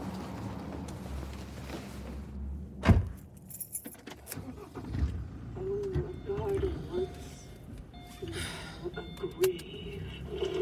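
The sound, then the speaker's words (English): Keys jangle and clink inside a car as someone has just got in, with a sharp thump early on, over a low rumbling cabin hum and faint muffled sounds. “Just got in the car.”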